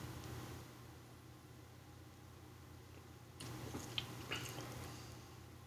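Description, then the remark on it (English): A quiet sip of a pumpkin-spiced coffee latte, with a soft slurp and a few small wet mouth clicks over a steady low background hum. No one speaks. “Let's take a sip of this bad boy.”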